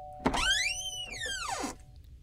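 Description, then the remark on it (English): A door creaks open: a soft thump, then a long, squeaky hinge creak that rises and falls in pitch over about a second and a half, with no one talking. “Oh, I think I hear someone at the door. Open the door.”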